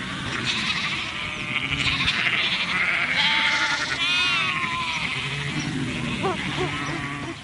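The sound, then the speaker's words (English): A flock of sheep and lambs on a farm in springtime lambing season bleat continuously, overlapping calls of varied pitch, some high and quavering, forming a dense, loud chorus with a few sharper lamb cries toward the end. “Springtime spells lambing season.”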